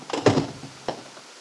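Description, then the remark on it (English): A door is opened, with a short cluster of rattling, clunking noises followed by a sharper click about half a second later, then quiet. “I hope this door isn't locked. Oh, thank goodness.”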